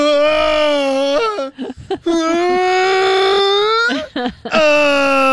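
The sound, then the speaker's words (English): A voice imitates the loud, strained moaning of a man running up a hill during a race: three long, sustained harmonic groans with sharp breathy gasps between them, each moan holding a steady mid pitch and ending with a rising wobble. “He was making the most aggressive and orgasmic noises that I've ever heard in my life.”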